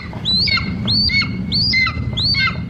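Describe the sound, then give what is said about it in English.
A golden eagle calls four times in steady succession, each a thin, high, whistled yelp that slurs up and then down, over a low rumbling background. “It shares the continent with a second equally majestic eagle, the golden eagle.”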